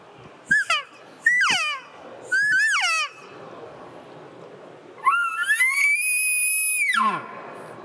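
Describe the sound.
Elk cow calls blown on a tighter-stretched September latex diaphragm reed, pitched an octave higher: three short, high, downward-sliding mews, then a longer call that rises and holds a piercing high whistle before dropping off, with no talking.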